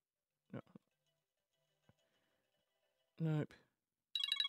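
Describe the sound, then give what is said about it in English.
An iPhone ringtone starts loudly at the very end with bright, stacked electronic tones, right after a few short bursts of speech and a brief click. “This is, oh, a friend of mine had this ringtone and I wanted to peg her phone at the wall.”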